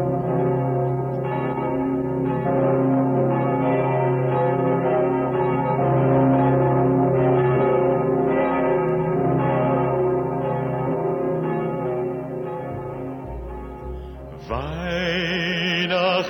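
The bells of St. Stephen's Cathedral in Vienna peal continuously. The largest bell, the Pummerin, booms deep and low beneath layered, ringing overtones; the full chorus swells steadily, with a brighter, busier clang rising near the end.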